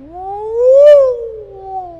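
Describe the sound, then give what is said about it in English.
A human voice imitates a passing siren with one continuous wail, sliding up in pitch, peaking loudly, then gliding back down more slowly over about two seconds. “Do you hear how as the siren approaches you, it's winding up, and then it passes you, and then it winds down, right?”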